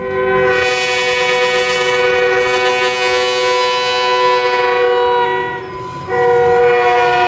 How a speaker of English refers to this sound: I don't know if you've ever lived near train tracks, but it doesn't matter what time it is. Those guys will just blast that horn. And I think they do it on purpose.